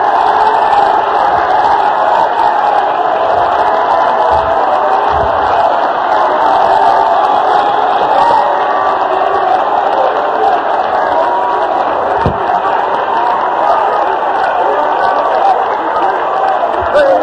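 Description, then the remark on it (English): A church audience claps and shouts in worship of the Lord: a loud, continuous roar of many voices cheering and calling out, with clapping blended in, holding steady for the whole stretch without a pause. “Because the book said, oh, clap your hands, all ye people. Shout unto the Lord with a voice of triumph.”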